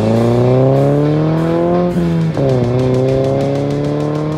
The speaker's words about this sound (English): By the way, hear those car sounds? That poll was courtesy of Ilya Malin, and I want to thank you for sending your car sound into the show.